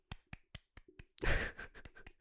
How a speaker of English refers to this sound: That was clapping and nothing else.